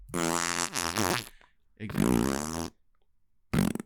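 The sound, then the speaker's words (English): A voice imitates farting with three buzzy, vibrating bursts: two long ones close together, then a short final puff after a pause, loud. “Oh, you sound like that fake tape that Sonic left to try to trick. A lot of fart jokes in this movie.”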